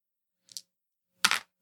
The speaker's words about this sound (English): So then I'm rolling one more dice because I did roll one more 6. All right. So I now have 1, 2, 3, 4, 5 successes, and I'm adding 2 dice to that.